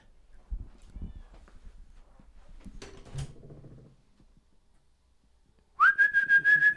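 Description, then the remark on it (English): A chubby male cat, Mr. Cat, lets out a single loud, drawn-out meow near the end, following a stretch of soft thumps and faint rustling. Nobody speaks. “Mr. Cat's meowing.”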